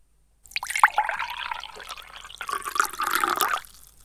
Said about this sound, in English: Prepare to listen to the second pour. Good luck.